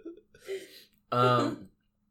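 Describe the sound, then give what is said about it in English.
A person clears their throat: a soft, raspy start followed by a louder, buzzing, voiced rumble lasting about half a second, then silence. “I had to clear my throat.”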